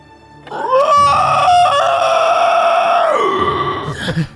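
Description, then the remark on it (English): A loud, drawn-out clockwork dragon roar with a shrill, crowing edge rises, holds steady for about three seconds with brief stutters, then drops in pitch and fades. No voices. “The clockwork dragon roars.”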